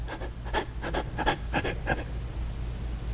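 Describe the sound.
A person demonstrates labored breathing, panting heavily in a quick series of breathy gasps, about eight rapid huffs in the first two seconds, fairly loud, then trailing off into quiet hum.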